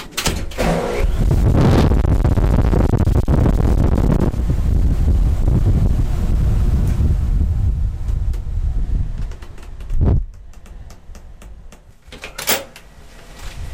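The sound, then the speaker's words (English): A cleanroom air shower inside a transparent cubicle, taken before entering an experiment cavern, blasts a loud, steady rush of air for about nine seconds, then shuts off, leaving quiet with a couple of brief clunks like a door opening. “And to do that, I have to step inside a transparent cubicle and receive something called an air shower.”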